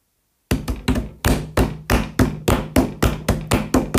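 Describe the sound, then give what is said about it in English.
Heavy feet stamp on the hollow boards of a wooden bridge in a steady, rapid rhythm, about a dozen loud thuds over a few seconds, forceful with no voices; the eldest billy goat Gruff of the tale stamping on the troll's bridge. “And he stamped his feet even louder.”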